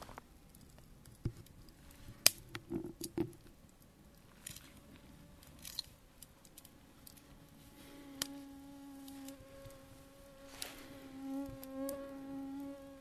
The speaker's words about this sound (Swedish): Fan vad mygg här är. Hör man att det surrar?